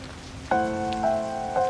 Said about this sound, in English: The rain rains yet harder, and she puts on a yellow slicker and galoshes and goes out with a flashlight.